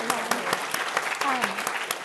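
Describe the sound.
A classroom audience applauds steadily, many hands clapping in a dense, continuous patter with a few sharper claps standing out, while faint voices murmur underneath.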